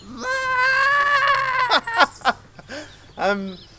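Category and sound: vocal imitation, person imitating a chicken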